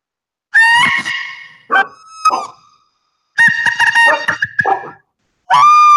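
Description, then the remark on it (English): A handmade clear translucent bird call is blown, producing loud, harsh screeching bursts that mimic a marsh bird's screeching call, four ragged calls separated by short pauses, with no talking. “But so that's supposed to be like mimic their kind of the call they make when they're screeching across the marsh.”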